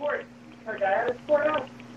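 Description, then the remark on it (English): A man, one of the guests, yells angrily in the background, his raised voice coming through thin and muffled as if over a phone line, in three short bursts over a low steady hum. “Man, who's yelling in the background?”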